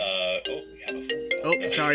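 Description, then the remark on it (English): A ringtone from a phone connected to a computer plays a bright, melodic sequence of sustained electronic tones that step between pitches, fairly loud, filling the whole moment. “My wife's phone is connected to the computer, so my apologies.”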